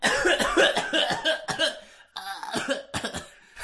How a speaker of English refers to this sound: Oh, you can hear me when I cough.